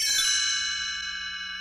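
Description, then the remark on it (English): A bright cluster of chimes rings out together at once, then lets its shimmering high tones decay slowly, sustaining clearly with no voices over it. “You'll know it is time to turn the page when you hear the chimes ring, like this.”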